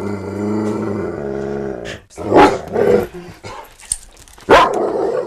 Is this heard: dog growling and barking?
yes